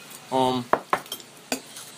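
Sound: spoon clinking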